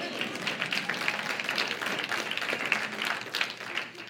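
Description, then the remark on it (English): An audience applauds steadily at a church in Midtown Jackson, a dense wash of many hands clapping at once, sustained for several seconds without pause, with no talking over it. “And you can clap. I'm okay with that.”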